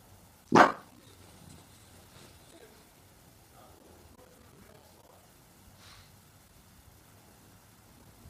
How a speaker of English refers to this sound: It's my sister's dog, Pebbles, watching after her.